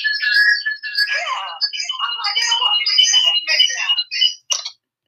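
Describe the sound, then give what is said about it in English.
A phone rings with an incoming call: a loud, chirpy, warbling ringtone melody of high tones that plays steadily for about four seconds, then breaks into two short final bursts. “Y'all hear right, Tina calling me?”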